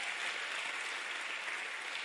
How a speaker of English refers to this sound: All seven of you can clap for that. Come on, put your hands together for that. Everybody in the room.